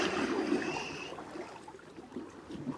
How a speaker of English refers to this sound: Just feeling into the song of the water this morning. The whoosh. The washing over.